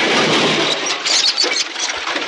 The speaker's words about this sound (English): Jiminy. Them rats pitched that cat through a window.